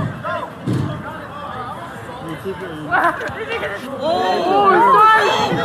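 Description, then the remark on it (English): A crowd of overlapping voices shouts and yells in a chaotic street brawl outside a bar on Washington Street, where opposing groups fight with bear spray, bare fists and batons, with a few dull thumps, the screaming growing louder and more frantic toward the end. “I think it's just a bunch of screaming and yelling.”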